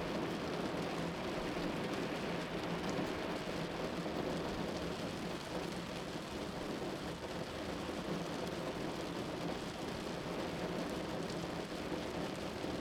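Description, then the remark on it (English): Steady rain falls continuously, a dense, even hiss of drops pattering on surfaces, with a faint low rumble underneath suggesting thunder. No voices are present. “It may be unsettled outside, where the wind blows, where rain showers are intermittent, and fog covers a once familiar land, but you are safe and dry, warm in a more silent space.”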